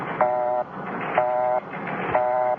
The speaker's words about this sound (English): Okay, so it's a busy signal.